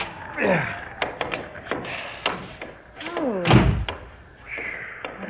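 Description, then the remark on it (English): In freezing cold, a door handle is rattled and tried with several sharp clicks and knocks, then the door creaks loudly open with a heavy thud, followed by a soft rushing draught. “For heaven's sake, try the door.”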